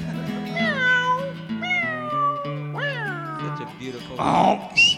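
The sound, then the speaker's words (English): A bunkhouse cat, stepped on, lets out three long, drawn-out yowls in a row, each pitch sliding downward. A low steady drone sits beneath them, and a brief burst of rough noise follows at the end. “Oh, we stepped on the bunkhouse cat.”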